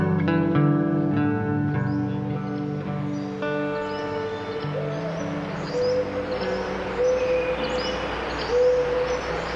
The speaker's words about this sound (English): We leave you this week in the Redwood Forest of Northern California, and with some of the birds, large and small, that make their homes among the majestic trees.